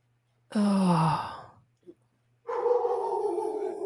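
dogs barking

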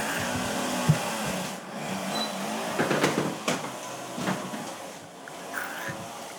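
door being closed

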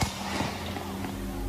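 multiple gunshots

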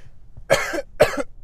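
cough

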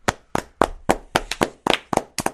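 applause

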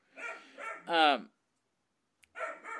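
puppy barking

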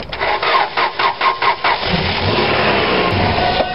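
car engine cranking

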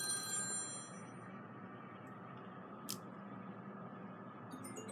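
telephone ringing

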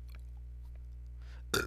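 burp

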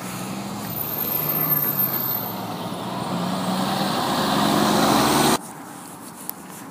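bus arriving

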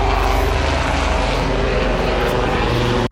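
helicopter flying overhead

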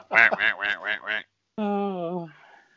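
duck quacking sound effect

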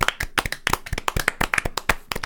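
round of applause

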